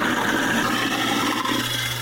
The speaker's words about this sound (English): I'm going to use the posh sink garburator we've got up here. That sounds a lot like a lion. I promise you. Turn it back on here.